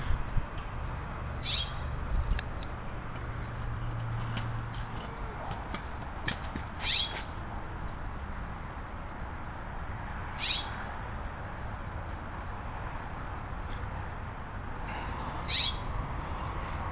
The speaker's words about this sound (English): We think it moved to a different tree. Seems to be some kind of bird I can't see. And I'm not enough of a bird watcher.